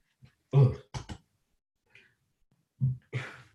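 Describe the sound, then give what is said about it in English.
A low, throaty burp rumbles out, followed by a couple of short guttural bursts, then after a pause another deep belch trails into a breathy, hissing exhale. No speech is heard. “Sorry, I had to burp.”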